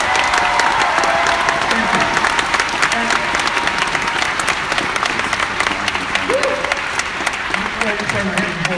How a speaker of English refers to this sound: So before I go further, would you give a great big round of applause for these guys?